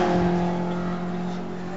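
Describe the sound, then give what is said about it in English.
A Porsche 924 race car, the number 58 car, drones with a strong, steady harmonic engine roar, easing slightly as it goes past. No one speaks. “Ooh, who's this doing? No, it's the Porsche again, 924.”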